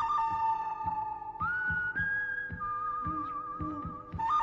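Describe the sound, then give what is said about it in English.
A sustained whistle holds a steady tone, stepping up in pitch partway through, with a regular thumping beat underneath for the whole few seconds. “So let's go ahead and just get that whistle on out of here.”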